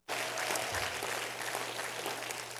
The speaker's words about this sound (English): If you're excited about it, clap your hands unto the Lord. Praise God.